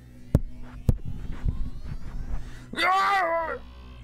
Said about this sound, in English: a muffled scream out in the hallway.